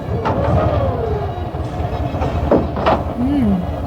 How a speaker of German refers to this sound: Er ging zu einem der geparkten Wagen. Und gleich darauf war das typische Wimmern des alten Motors zu hören.